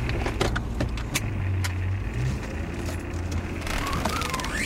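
A car drives off, its engine a steady low rumble throughout, with scattered clicks and clunks early on and no voices.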